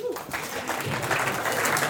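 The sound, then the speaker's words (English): A church audience breaks into steady applause for itself, many hands clapping in a dense, continuous patter that stays fairly loud throughout, with a few faint voices mixed in. “Give yourself a clap.”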